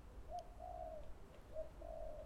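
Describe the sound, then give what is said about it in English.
A wood pigeon coos in a soft, rhythmic series of low hooting notes, some short and some drawn out, over a steady low background rumble. “Of what I grew up calling the wood pigeon.”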